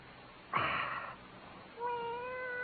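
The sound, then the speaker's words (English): A cat meows twice with no talking: first a loud, rising cry, then after a short pause a thinner, drawn-out mew that holds steady to the end. “Cat?”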